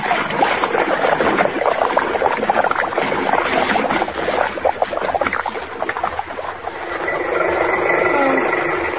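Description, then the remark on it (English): A car is forced through a bridge rail and plunges into lake water, followed by loud, continuous churning and splashing that settles into a steadier rushing wash near the end, with no voices. “She's going through the rail. She's in the lake.”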